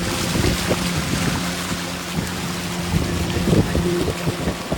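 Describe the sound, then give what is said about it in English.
A motorboat engine drones steadily while travelling up a river into the Darien Gap, with wind buffeting the microphone and water rushing past the hull, a continuous, loud travelling noise with no voices. “Once you get in this boat and push back and we go that way, yeah.”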